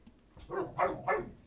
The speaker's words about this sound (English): Our dog's gonna bark because the cat just, I heard him jump over the gate of the fence because he wants to go lick the barbecue grill.